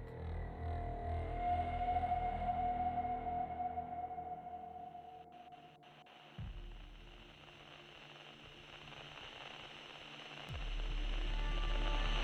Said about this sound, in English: The sharp click of a switch and a whir of static on an old multi-band radio saturated a small, Floridian, claustrophobic one-bedroom apartment with a loud audio gradients, crawling from low to high, back to low pitches of frequency.